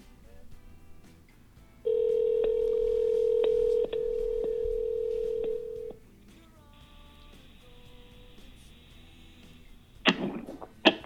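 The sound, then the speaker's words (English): A telephone number, the agent's number of Jerry Jones, owner of the Cowboys, is dialed for a phone interview on Cheeky Media: a quick run of touch tones over a steady tone, then a later ringing tone before a brief clatter near the end; no one speaks. “But he did give us his agent's number and he said that we could call him today around 4 o'clock and he would do a phone interview for about 10 minutes with us.”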